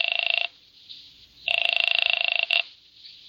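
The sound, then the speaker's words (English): A telephone rings in two trilling electronic bursts, a short one followed after a pause by a longer one, fairly loud with no voices. “I used her phone and called Wanda.”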